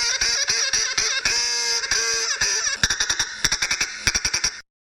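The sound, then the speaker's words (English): A duck quacks loudly, starting with drawn-out nasal calls and breaking into a quick staccato run of short quacks before stopping abruptly. No one speaks. “We're going to start out with an extended Nuclear Regulatory Commission duck report.”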